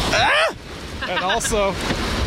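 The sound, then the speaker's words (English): Loud, steady rush of churning river rapids with gusty wind buffeting the microphone, while a person riding through the rapids cries out in a few high, wavering yelps over the roar as water hits them. “I got another rapid coming up here, so I might squeal if I get hit by with water, but I'll try to do my best to hold on to this microphone.”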